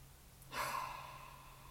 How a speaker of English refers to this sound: I highly recommend creating a daily breath practice and just breathing. Try it right now with me.